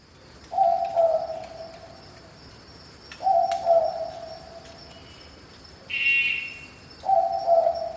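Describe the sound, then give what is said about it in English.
A southern boobook owl gives its two-note double hoot three times at a steady, unhurried pace at night in the Australian bush, over a constant high insect drone and a brief higher call. “A quintessential sound of the Australian bush at night is the double hoot of the southern boobook.”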